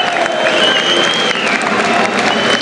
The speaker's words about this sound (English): the fans, they're applauding the team as they wander over to the, basically the divide.